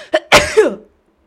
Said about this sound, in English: Oh, fuck, I've got to sneeze.